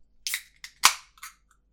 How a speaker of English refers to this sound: we're going to start with the Neo Tokyo Lager, which is from Garage Project, because we thought, you know, it's a bit thirsty, might crack open a lager. Funnily enough, not Foster's. So we'll give that a bit of a crack.